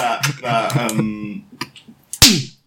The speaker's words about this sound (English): Sorry, just practicing a few warm up punches.